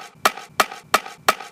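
Four sharp, evenly spaced fireworks bursts about 30 yards away, each a loud pop trailing off in a brief crackling decay, with no voices.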